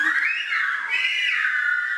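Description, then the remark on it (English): A loud human whistle in Silbo, a whistled form of Spanish, rises and falls in smooth pitch glides, mimicking the spoken greeting 'buenos días'. It runs as one continuous phrase with no voices or other sounds. “The whistles mimic the sound of spoken Spanish.”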